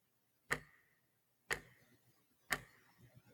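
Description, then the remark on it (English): A clock ticks steadily, three crisp, slightly ringing ticks spaced exactly one second apart, clear over a faint, quiet background with no voices. “Time ticking away, no pause.”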